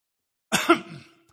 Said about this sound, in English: I coughed right in that mic. I'm sorry. Sorry about that.